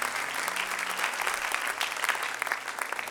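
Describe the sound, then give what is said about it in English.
A church audience claps together as people are being seated, in steady, dense applause, many hands striking at once in a continuous crackling wash that holds an even loudness for a few seconds. “Why don't you clap your hands one more time as you're being seated?”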